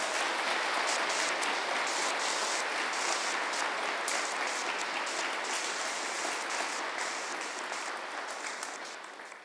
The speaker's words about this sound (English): Now there's another jump, but really quick, can we give these folks a round of applause?